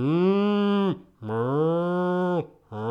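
A cow moos loudly: two long, drawn-out moos followed by the start of a third, with brief pauses between and no voices.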